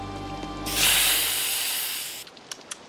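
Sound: pepper spray being sprayed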